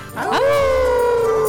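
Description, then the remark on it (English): Several voices let out a loud, sustained Christmas howl together on the count of three, rising quickly then holding a long wavering pitch, imitating dogs howling. “on the count of three, we're going to do a big Christmas howl at the Moondog”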